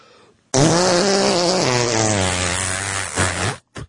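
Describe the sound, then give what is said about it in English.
A single long, loud fart noise, buzzy, lasting about three seconds and sliding lower in pitch before trailing off with a brief final sputter. No voices are heard. “All right, a lot of that was just fart noise.”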